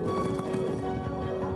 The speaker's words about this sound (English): They're off. Back on the hunt. They're racing. If you didn't hear by all the horse hooves, that's what's going on right now. Along with the illustrious. That's not a lightning storm. It's horses.